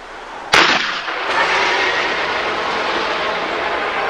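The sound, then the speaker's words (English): A harpoon gun on a boat fires at a giant sea creature with one sharp, loud blast, followed by a steady rushing, hissing roar that continues to the end. No one speaks. “Grab the harpoon gun to the left of you.”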